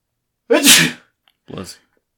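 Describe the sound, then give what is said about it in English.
A single loud sneeze bursts out with a sharp hissing release, followed a moment later by a shorter, softer sniff or exhale, with no talking. “Bless you. Sorry about that.”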